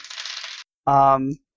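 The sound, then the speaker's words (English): Dice rattle and clatter across a table for about half a second, fairly loud, then stop; a short burst of a person's voice follows a moment later. “But pretty sure I still kill a man, because on two dice I ended up with 39.”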